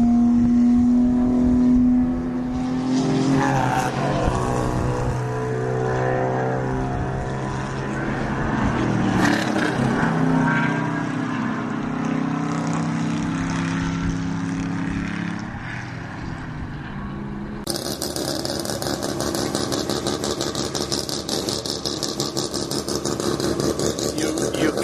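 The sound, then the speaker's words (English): Loud race car engines roar past on the track at Shannonville Motorsport Park, their pitch rising and falling as they go by, followed by a steady rough engine drone; no talking. “… signing out from Trackside here at Shannonville Motorsport Park. Oh, yeah. Here, I'll let two more cars.”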